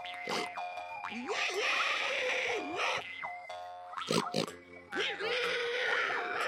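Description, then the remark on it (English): A voice imitates a pig, producing several nasal, snorting grunts and squeals in quick bursts, loud, with rising and falling pitch. “Pigs don't like that. They go.”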